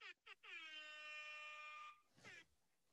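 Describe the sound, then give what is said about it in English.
A loud, steady buzzer blast with a bright, brassy tone holds for about a second and a half after two quick short bursts, then a brief voice follows. “I gotta give you the buzzer.”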